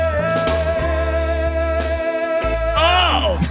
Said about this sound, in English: That wonderful sound you're listening to is …. Jump blues, boogie, woogie, and swing.